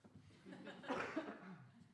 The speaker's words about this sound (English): Yeah, I just need to cough.